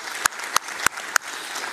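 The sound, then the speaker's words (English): Congregation applause at a church service, given for the Lord: a steady wash of many hands clapping, with four louder, crisp individual claps standing out at an even, regular beat. No one speaks. “Hey, can we give a hand to the Lord?”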